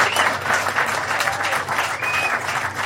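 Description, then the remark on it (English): Applause fills the whole three seconds: a loud, dense, steady patter of clapping with no pauses, and a faint high tone gliding briefly underneath. “You can't see it, but he is applauding me.”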